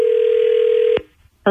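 A phone line ringing out as the B98.5 radio show calls a listener's friend: a steady electronic ring tone holds for about a second, cuts off into a short silence, then starts again. It's clear, with no voices.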